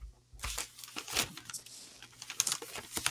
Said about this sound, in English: Are these are paper notes that I hear? Yeah. And I found it right here.